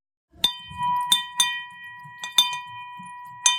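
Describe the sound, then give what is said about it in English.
A money bell at Hudson Kitchen, rung when someone is celebrating something, rings out in a quick series of about six irregular clangs, each strike leaving a bright, sustained metallic tone hanging over faint background noise. “So at Hudson Kitchen, we have what we call a money bell that we ring when someone's celebrating something.”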